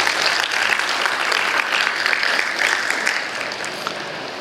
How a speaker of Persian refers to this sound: یه دستی برای گروه ورشیپتون بزنید لطفا.